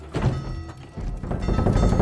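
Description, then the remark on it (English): A malfunctioning cuckoo clock, one among a lot of clocks, gives a heavy, muffled thunk, followed by a second burst of low, rattling mechanical knocking that lingers for about a second. “Oh, sorry, there's a deranged cuckoo in there.”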